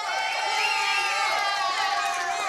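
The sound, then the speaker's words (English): A rowdy sellout crowd dressed in red cheers steadily at the Wahlburgers inside Hy-Vee at 135th Street in Overland Park, a dense, loud wall of many voices with high shouts and whoops rising above the roar, sustained without a break. “We have a sellout crowd, and we got a crowd that's red and real and rowdy.”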